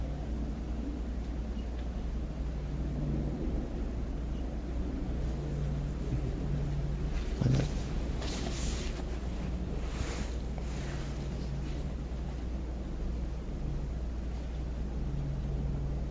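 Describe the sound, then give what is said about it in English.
Wind howls and rushes steadily throughout, a dense low rumble with a faint humming undertone, growing briefly brighter and gustier around the middle before settling back. No voices. “If you listen very finely for the wind howling, what happens to consciousness?”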